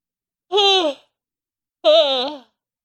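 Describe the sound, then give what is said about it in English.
A voiced yawn drawn out in two wavering, moaning stretches separated by a short pause, with no other sounds or talking around it. “Sorry about that yawn.”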